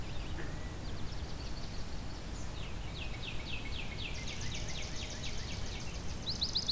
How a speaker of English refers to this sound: This is Fletcher Creek Ecological Preserve. So you're hearing lots of swamp sparrows.